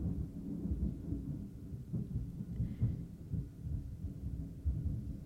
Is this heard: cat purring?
no